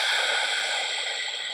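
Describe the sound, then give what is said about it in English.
A single deep, steady inhale through the nose while letting the belly flop out, a soft airy hiss lasting over a second, fairly quiet, fading slightly toward the end with no voices. “Breathing in, letting the belly flop out.”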